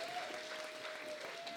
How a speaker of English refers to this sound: Can we give him a hand? Yeah, absolutely.